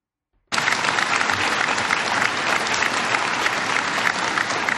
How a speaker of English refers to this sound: That's getting an applause. Really. You Christians out there, You should be a little bit worried at this point, because people are applauding at this as if somehow this is some great truth and it finally somebody's being brave enough to say it.